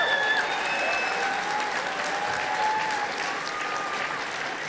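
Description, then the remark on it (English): A crowd of a couple thousand applauds steadily for several seconds for the people up on stage, a dense wash of clapping hands at an even, moderate loudness, with a few faint whistles or cheers rising above it. “First of all, let's hear it for these people up here, too, by the way.”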